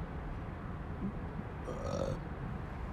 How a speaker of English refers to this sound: I fucking burped.